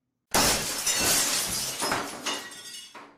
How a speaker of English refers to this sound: Wham! Rachel hit the cylinder. A flailing mob of Hork-Bajir literally covered her. And then... the cylinder shattered.